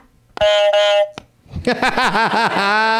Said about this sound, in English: So thanks to the Flannel Cakes podcast for these buzzers